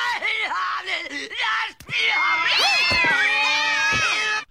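Cats yowling and screeching, loud wavering wails that rise and fall and overlap one another, with a brief break partway through before the racket starts up again.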